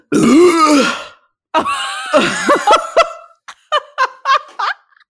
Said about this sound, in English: I've drunken half a bottle of mineral water because I really, really wanted to get a burp in, like a big long burp, and it's not coming. I have literally sat here drinking half. So what I'll do is I'll work myself up. Hang on, it might be coming.